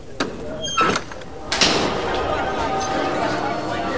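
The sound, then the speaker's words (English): A few sharp knocks and clunks of convention doors being pushed open, followed by a swell of busy convention crowd chatter and room noise that continues steadily to the end. “The doors. The only thing standing between us and the ultimate con experience. I just hope you're ready. Let's step inside.”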